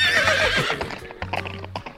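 A horse neighs loudly, a shrill whinny that wavers and falls, followed by a few hollow clip-clop hoofbeats underneath, with no voices.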